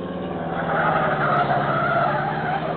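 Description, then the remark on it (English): Car tires skid loudly on a sharp turn in a sustained screech lasting about three seconds, with an engine roaring underneath throughout, steady. “Look, other car turning again.”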